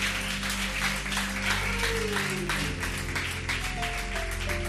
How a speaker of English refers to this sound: Clap your hands and bless Him.